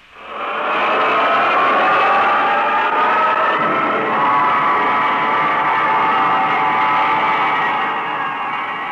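rocket launch roar

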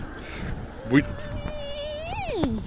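aeroplane flying overhead

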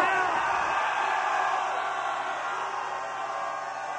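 concert crowd screaming

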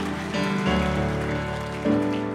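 audience clapping hands

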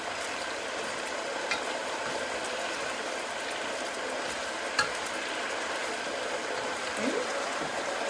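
stirring food

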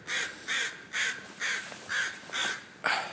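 crows cawing

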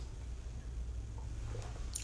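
sipping tea

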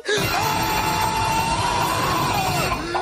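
person screaming loudly

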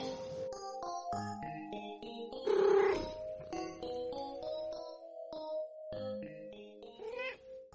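cat meowing

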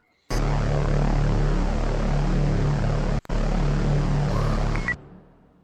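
airplane engine noise

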